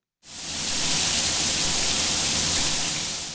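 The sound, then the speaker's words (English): A hot shower runs steadily after a sudden start, a dense, even hiss of spraying water that stays loud without pause for a few seconds. “You can thank code if you take a hot shower or a warm bath in the morning.”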